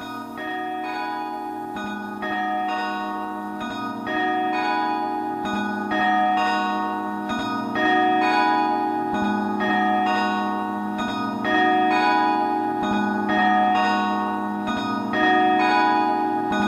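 A video game soundtrack track plays on its own: sustained, bell-like chiming chords over a low bass note, shifting to a new chord about every two seconds at a steady, moderately loud level.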